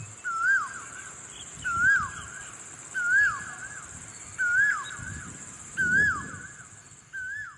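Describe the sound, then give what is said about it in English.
A bird in a jungle sings the same short, warbling phrase six times at a steady, unhurried pace, clear over a constant thin, high-pitched hiss in the background. “I gotta say, this one I actually quite liked because, I mean, come on, when else can you shower in the middle of a jungle, right, with your ooh bird singing to you?”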